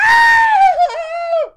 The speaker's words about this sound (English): Huge scream. Right. I would normally scream, but now that we have a little bit of production, I don't have to scream.